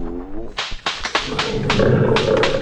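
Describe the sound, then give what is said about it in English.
A Bengal tiger named Prince Rajput snarls and roars in a rapid series of harsh, raspy bursts, then gives way to a sustained rumbling growl; a brief voice sounds at the very start. “Tiger, I'm not afraid of you, tiger.”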